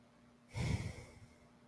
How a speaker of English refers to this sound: I can't talk a lot because I'm running out of breath so bad. I have to keep breathing through my mouth, and that makes me lightheaded.